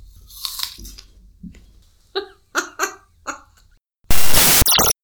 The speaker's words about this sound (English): We're going to chew an apple.